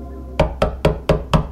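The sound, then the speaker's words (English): Five firm knocks on a wooden door in an even, steady rhythm, fairly loud, with no voices around them. “Before I reached the window, the door called to me.”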